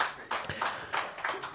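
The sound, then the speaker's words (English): Sparse, polite applause from a small audience: a thin patter of hand claps that swells briefly a few times, fairly quiet, with no one talking over it. “Like, I'm an over Ryder Cup song, guys, but let's not clap like it's fucking golf.”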